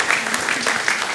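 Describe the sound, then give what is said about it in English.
A church crowd claps steadily, a dense patter of many hands at a fairly even loudness throughout, with no voices standing out above the applause. “You can clap as much as you want.”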